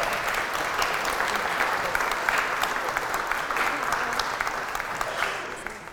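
An audience claps in a steady, dense round of applause that holds at an even loudness throughout, a crisp wash of many hands with no voices standing out.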